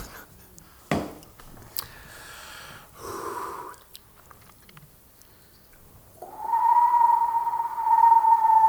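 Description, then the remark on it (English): A person imitates a screech owl's call: a brief wavering note, then a long, loud, steady whistled trill held for a couple of seconds. A few sharp clicks come earlier. “No, that's that owl shit that you do. It's badass. That's a screech owl.”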